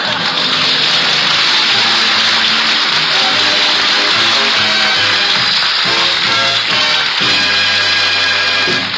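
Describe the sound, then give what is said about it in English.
A hot water faucet runs hard while a pile of dishes is being washed: a steady loud gush of water pouring continuously for several seconds, with faint pipe-like hum and tones beneath the splashing and no voices. “Would you turn on the hot water”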